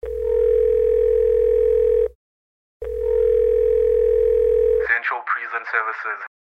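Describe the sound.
A loud, steady telephone dial tone sounds twice in long bursts separated by a short pause, then cuts off as a voice briefly speaks on the line, as a call is placed to a gay man in Tanzania.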